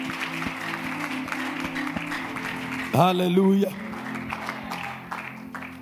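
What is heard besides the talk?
audience clapping hands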